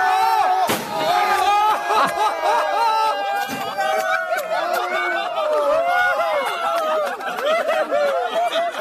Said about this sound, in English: It actually was Daddy's car getting dropped.